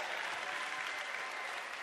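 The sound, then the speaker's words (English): A church audience claps their hands for the Lord during a morning sermon in a dense, steady burst of applause, loud and continuous throughout, with no single claps standing out from the wash of sound. “Can somebody give the Lord a hand clap this morning?”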